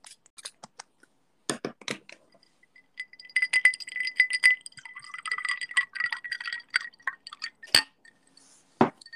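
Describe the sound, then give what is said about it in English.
A few sharp glass clinks, then a drink of Ketel One is poured into a glass for several seconds with a ringing, rising tone, ending in more clinks. No one speaks. “Yo, anyway, pour me one. Oh, hang on. All right, hang on. This is going to be a sound clip, so everybody be quiet.”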